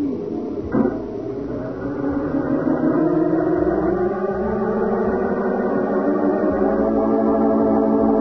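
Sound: car engine driving away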